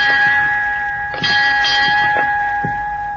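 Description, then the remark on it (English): A ship's bell on the bridge of the ship Gascony rings loudly, a series of quick metallic clangs whose bright, sustained tone hangs between strikes. No voices accompany it. “Who rang those bells?”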